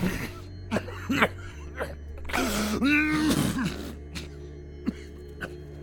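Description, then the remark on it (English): Several throaty coughs come in short, uneven bursts, with a longer rasping, throat-clearing stretch in the middle, then a few quieter coughs trailing off. “I coughed.”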